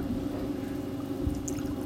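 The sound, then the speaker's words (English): Liquor glugs and bubbles steadily as it is poured into shot glasses, a continuous gurgling with a soft knock partway through and no voices. “So let's pour these. Ooh. Look at that bubbling sound.”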